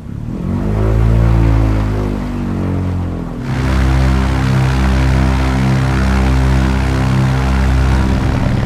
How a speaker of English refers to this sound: Blimp Airship by Sound of Essen is a real rarity. Recordings of a rare blimp, including engines, some specifics, and a flyby.